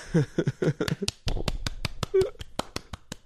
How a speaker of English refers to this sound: That's applause. Yeah. Well done.